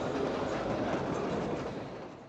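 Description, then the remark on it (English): A metro train in Mecca, Saudi Arabia, on a line that operates only one week a year, rumbles along the rails with a steady, dense roar and faint clickety-clack, loud at first, then fading slightly as it moves on. “So there's this train line that for 1 week a year has the highest reported capacity of any metro system in the entire world.”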